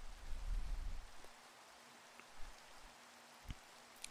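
Steady rain hisses softly with scattered drops pattering. A low rumble swells during the first second, then fades, leaving only the quiet, even wash of rainfall.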